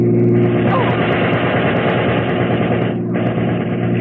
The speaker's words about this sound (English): Jerry, look out, that car.